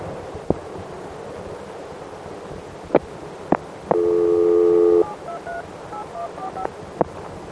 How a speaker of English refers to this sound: The first one here, I'll let you listen to our touch tone dial tone, which I'll go into a little bit later, and you'll hear me touch tone the number out.